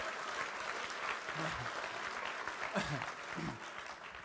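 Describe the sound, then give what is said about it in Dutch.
Sustained audience applause fills the whole stretch, a dense steady clatter of many hands clapping at once, with a few voices briefly calling out over it. “Geef hem een groot applaus.”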